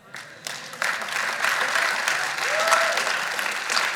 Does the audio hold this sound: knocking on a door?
no